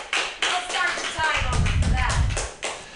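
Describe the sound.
A room of people applauds for a few seconds, a dense burst of clapping with some low crowd noise and voices mixed in, fairly close and steady before tapering off.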